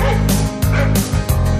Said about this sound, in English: This dog will jump all over you. He is a cruel mutt. He will bark at you. He will run you down to the ground.